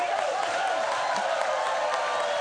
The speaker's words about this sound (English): Can you please welcome to the stage the biggest round of applause you've given tonight,